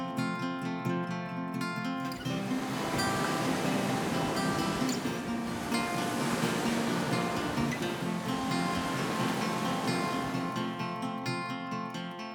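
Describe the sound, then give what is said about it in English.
A broad rushing wash of surf swells up and slowly recedes over about ten seconds, blended with a steady, sustained tonal music bed underneath; no one speaks. “Take a moment to enjoy the feeling of the sun and the breeze as you listen to the waves.”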